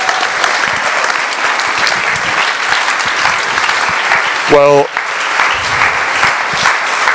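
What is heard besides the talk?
audience applause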